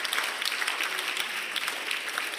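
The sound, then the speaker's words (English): Sustained applause from a large group, a dense, steady wash of many hands clapping at once with no voices standing out, at moderate loudness, as a church audience claps their hands in worship. “Everybody, clap your hands and worship him for just a few moments and thank him for the opportunity to hear his word together.”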